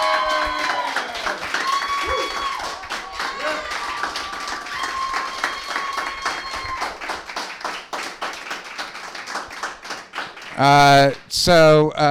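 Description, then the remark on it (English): An audience breaks into sustained applause to thank two guests, many hands clapping in a dense, steady patter, with voices mixed in and a loud cheer rising near the end. “Well, listen, I want the crowd to join me in thanking these two wonderful gentlemen for joining us.”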